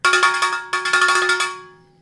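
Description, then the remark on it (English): A cowbell struck rapidly about a dozen times in two quick runs, with a bright, clanking metallic tone. The ringing fades out on its own after the last hit, with no voices. “Mono cowbell.”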